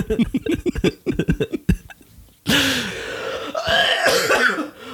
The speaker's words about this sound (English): Why am I coughing again?